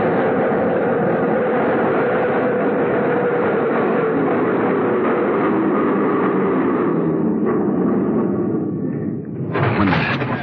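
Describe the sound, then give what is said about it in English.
A loud, steady rumble of a subway train filling the platform, easing off as it slows, then a brief hiss or clatter as it comes to a stop. No voices. “The train stopped.”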